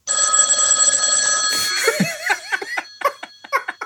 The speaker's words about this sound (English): Man. Pick it up. Answer it. Oh, baby, just ignore that phone call, baby.